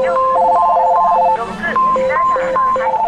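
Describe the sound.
Racks of telephones for sale in a giant electronics store, Yodobashi Camera in Kyoto, Japan, ring at once, their beeping tones overlapping in steady, pulsing patterns, loud, with answering machines playing and indistinct voices mixed in underneath.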